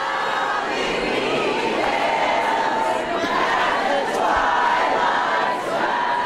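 A loud, rowdy crowd at a board meeting about critical race theory shouts, boos, chants and sings without letup, many voices merging into a dense, unbroken roar with scattered rising yells and chant-like swells.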